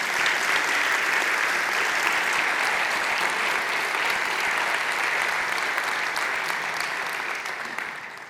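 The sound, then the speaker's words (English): Sustained applause from a large gathering for a group associated with First Baptist Fruitland Park who were asked to stand, a dense steady patter of many hands clapping at an even loudness for several seconds before beginning to taper off at the end. “those of you, would you please give them a round of applause?”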